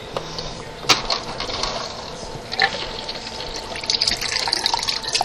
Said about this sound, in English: All right, I'm still wiping up from cracking eggs. And I'm putting a little bit of water into these eggs.